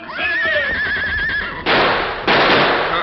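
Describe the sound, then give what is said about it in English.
A wavering, whinny-like cry gives way to two loud gunshots, each a harsh burst of noise, fired in quick succession about half a second apart. “Those shots, everybody in the place will be here in a minute.”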